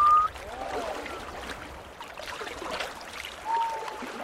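Henyo free divers exhale loudly as they burst out of the sea to take in more oxygen, with short whistling breaths near the start and again near the end over a steady wash of splashing sea water.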